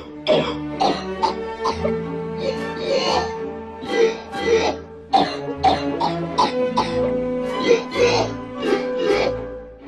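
Cough sounds played on a sampler keyboard, as in the film Ferris Bueller's Day Off, where Ferris Bueller plays the Blue Danube Waltz using coughing and vomiting sounds, pitched up and down and strung together into a melody, repeated rhythmically like keys on an instrument, with steady tonal bands underneath; loud, no talking.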